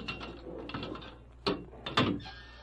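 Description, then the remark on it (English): Metallic clanks and scraping of a heavy jail cell door being unlocked by a sheriff and a deputy at first light of dawn, with two sharp louder clunks of the lock and bolt amid a rattling, grinding mechanism. “When the first faint light of dawn broke through the single small window of the cell, the sheriff and a deputy unlocked the door.”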